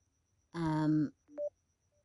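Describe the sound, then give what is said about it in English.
A telephone gives a loud, buzzy electronic tone lasting about half a second, followed after a short pause by a brief, quieter tone that jumps upward in pitch. No one speaks. “This phone.”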